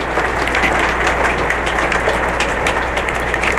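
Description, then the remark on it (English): Hail pours down in a dense, steady clatter of countless small impacts, a loud continuous hiss of sharp ticks with no pauses and no voices. “Finishing on my podcast, can you hear the hail?”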